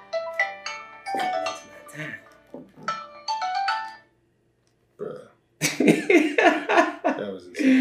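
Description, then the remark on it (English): A key-finder app alarm on a phone rings loudly in repeating bursts of shrill electronic tones for about four seconds, then cuts out before people start talking over one another. “It really won't go off.”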